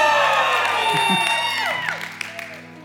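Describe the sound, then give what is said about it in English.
A large church audience yells and cheers together, a dense wash of whoops and raised voices that swells loudly at first, then gradually fades over a few seconds. “Hold on, y'all yelled for food. You better yell for some Jesus up in this house.”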